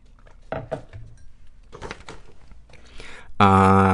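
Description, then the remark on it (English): Tea sipped from a cup: a few light ceramic clinks and soft handling noises, a brief slurping sip, then a loud, sustained bright tone at the end. “… shares an awfulsome moment after I have a sip of tea.”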